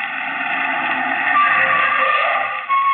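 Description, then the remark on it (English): A car engine hums steadily as a car comes around a curve in the road, swelling slightly in the middle as it rolls along, with a brief dip near the end and no voices. “Around the curve, a car. Hurry, Francis, you've got to stop it.”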